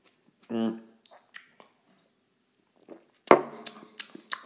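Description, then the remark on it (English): Someone drinks a fizzy hard orange drink: a short hum and a few soft clicks, a pause, then a sudden crackling burst of fizz with slurping sips and sharp little pops. “Ooh, a grape and then drinking this hard orange.”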